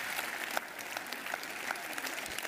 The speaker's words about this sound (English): And I want to thank you guys for what you guys, that's a clap for yourself.